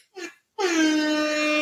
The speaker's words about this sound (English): All right, I'm going to give this guy a hip-hop air horn because he's out of control.